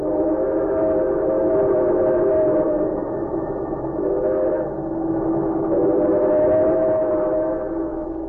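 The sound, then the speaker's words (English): A fast express train roars along steadily, its loud, continuous rumble carrying a sustained, droning whistle-like tone that swells slightly a few times, with no voices. “He might have understood could he have overheard a conversation taking place at that moment in the parlor car of a fast express.”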